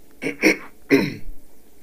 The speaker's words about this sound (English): Now, clear my throat.